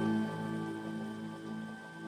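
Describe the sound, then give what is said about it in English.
Soft, steady water sounds like light rain patter, layered under the sustained ringing tones of a singing bowl that hum evenly throughout, in a meditation recording, with no talking. “Water noises.”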